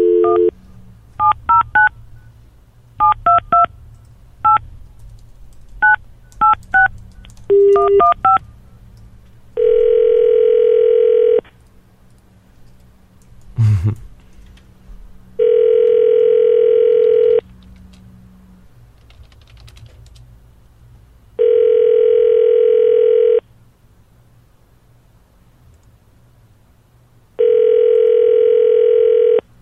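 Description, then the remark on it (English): A quick series of about ten beeping keypad tones as a random phone number is dialed, followed by four long, steady ringing tones spaced evenly apart with quiet gaps between them. “You want me to call mine right now? Yeah, go for it.”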